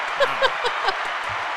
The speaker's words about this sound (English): Oh, I get applause.